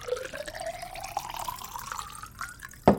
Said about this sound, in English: as the barman again refilled my small glass, he resembled a petrol station attendant, refuelling a vehicle that has just left the station, driven once around the block, and immediately returned with an empty tank.